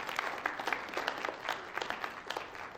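Steady applause from an audience at a worship service for a helper, a dense patter of many hands clapping at a moderate level with no voices standing out, continuing for about three seconds.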